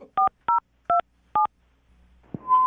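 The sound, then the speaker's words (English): A phone number is dialed: four crisp, loud touch-tone keypad beeps in quick, slightly uneven succession, then a click and the start of a steady line tone. “I'm about to dial the phone number and get him on the phone”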